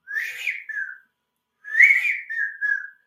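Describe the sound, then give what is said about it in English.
Two whistled calls, each a bright rising-then-falling whistle ending in a softer trailing note, as a person imitates a widgeon duck's whistle; clear with a short pause between. “The other half of all ducks make some sort or variation of a whistling noise. So widgeon make that iconic.”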